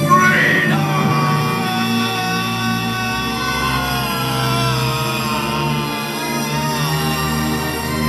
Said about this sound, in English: And still, to this day, I can't tell you why, but at the top of my lungs and as loud as I possibly could, as I finally came, I yelled out.